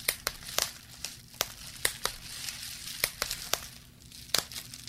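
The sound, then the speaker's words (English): Bubble wrap being popped: a dozen or so sharp, snappy pops at an irregular pace, with a soft crinkling of plastic running between them and no voices. “That is somebody popping one of those plastic with the little bubbles.”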